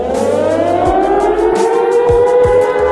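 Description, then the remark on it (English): A loud, continuous alarm siren wails with a steady, slowly rising tone, accompanied by low rumbling thumps and a dense, noisy background; no one speaks. “And sound the alarm.”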